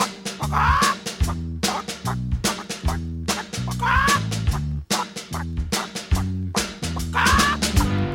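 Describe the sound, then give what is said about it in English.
Chicken clucks chopped and pitched into a steady musical beat, a short squawking phrase repeating every few seconds over thumping low notes, loud, with no talking. “….”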